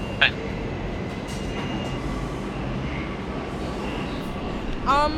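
A New York subway train rumbles along steadily with a dense low roar and faint tonal whine, with brief high metallic squeals near the start and end.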